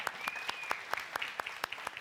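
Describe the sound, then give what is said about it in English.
An audience breaks into a round of applause for the speaker's wife, with sharp, fairly steady claps over a continuous bed of softer clapping. A faint whistle rises briefly at the start, and no one speaks. “Can you give a round of applause for my lovely wife?”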